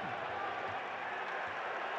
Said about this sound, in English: Crowd giving Dante a lot of love for that one.